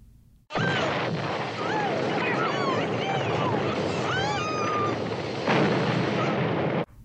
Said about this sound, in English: It is the gas station explosion.